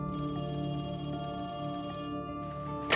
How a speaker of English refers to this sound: Late that night, his phone rang.